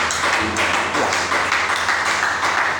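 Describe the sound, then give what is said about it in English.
A crowd claps their hands together in praise and thanks to God, a steady, dense burst of applause that stays loud and even throughout, many overlapping claps blending into a continuous patter. “By clapping your hands. By slapping one hand against the other.”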